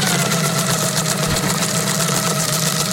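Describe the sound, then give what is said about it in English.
A cheap paper shredder sound effect whirs steadily for a few seconds, a loud, continuous motorized grinding hum with a buzzy mechanical rattle and no talking over it. “could you give me the very cheap paper shredder sound effect, please?”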